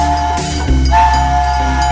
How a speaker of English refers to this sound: That's an express train, this Teague train.